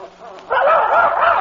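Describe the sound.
After a quiet half-second, a boy's voice imitates a dog barking: a loud, continuous yapping, wavering bark-like cry until the end.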